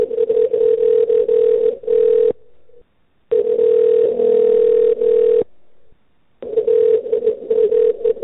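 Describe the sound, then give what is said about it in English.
A steady, mid-pitched telephone transfer tone on a call to Giant Eagle, heard while the call is transferred to customer service, sounds over a narrow phone line in three long stretches of about two seconds each, separated by brief near-silent pauses. No one speaks. “Please hold while I transfer your call to customer service.”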